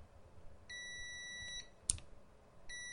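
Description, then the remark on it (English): A steady electronic continuity beep from a multimeter's buzzer, a high tone with harmonics, sounds for about a second, breaks with a sharp click of test probe contact, then resumes briefly, clear with no talking. “I mean, it's a noticeable second or second and a half before it decides it wants to beep.”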